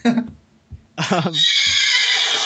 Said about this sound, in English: That's just a horse.